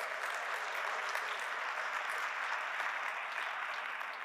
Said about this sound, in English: If you're on the lower level and you have, a vantage point of the balcony, I want you to turn around and look at the kiddos or students. Give them a round of applause, would you, church?